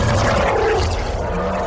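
A deep, loud creature roar rumbles continuously for under two seconds, growling low tones with a rough, noisy texture filling the whole clip, without any voices. The creature roars as it is stabbed in the back of its throat.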